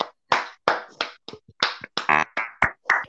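Around ten sharp, loud hand claps in a quick, slightly uneven rhythm, each a short bright smack with brief gaps between, heard on their own without talking.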